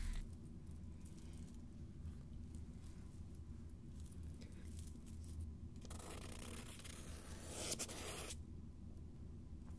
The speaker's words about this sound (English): I'm just going to draw the symbols on some paper.